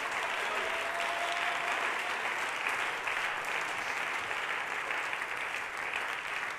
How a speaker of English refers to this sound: Oh, can we clap our hands and give him praise?